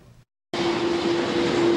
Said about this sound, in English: A plane crossing Taiwan's sky gently descends onto the runway. The cargo door goes up, and big cartons of freight are lowered carefully to the ground.